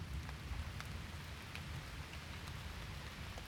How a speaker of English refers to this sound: Storm throwing little patterns at the window.